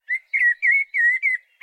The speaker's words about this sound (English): Let's start with the blackbird and the robin. Here's a verse of blackbird song, heard almost everywhere in spring.